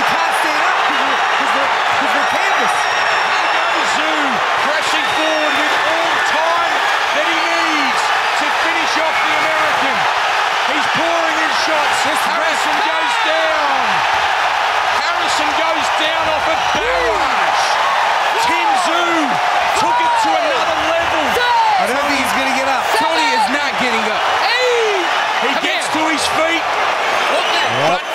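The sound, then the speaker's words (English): A boxing arena crowd roars loudly and without letup during the Tim Tszyu versus Tony Harrison fight, as Harrison is in trouble and Tszyu looks for the finish, a dense wall of cheering and shouting with voices mixed in. “Listen to that crowd.”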